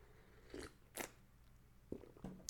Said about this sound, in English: Taking a sip of coffee.